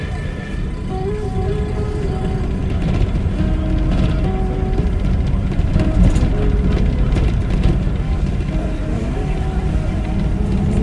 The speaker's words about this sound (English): We're just one of a half a dozen buses on the road from Hue, heading toward the 17th parallel